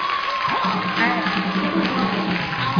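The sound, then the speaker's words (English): An audience claps for Jesus and cheers steadily, a dense wash of applause with shouting voices mixed in, sustained and fairly loud throughout with no breaks. “You can clap for Jesus better than this.”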